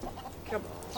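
Chickens cluck briefly, a few short throaty clucks overlapping over a low background rumble, with no voices.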